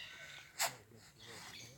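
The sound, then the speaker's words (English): Tasmanian devils fighting over a meal give short, sharp chucking calls, one crisp burst standing out above a low, murmuring background with softer muffled noises around it. “So as you can hear, they're using a lot of chucking sounds.”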